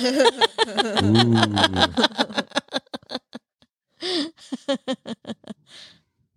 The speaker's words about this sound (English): Ooh. Oh, we got a meow in there.